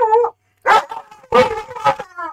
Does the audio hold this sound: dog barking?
yes